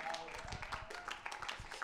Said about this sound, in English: That's the worst clap I've ever heard. That's up there with the actions.